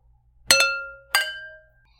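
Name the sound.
wine glasses clinking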